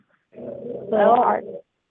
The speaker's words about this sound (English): Fenway is growling. Oh, sorry, guys. Growling.